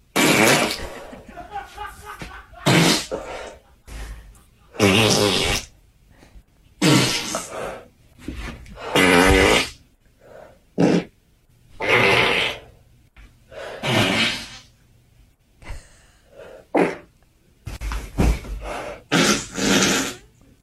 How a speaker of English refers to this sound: Is that a fart or a queef? I think she's farting, but she's also vaping and farting.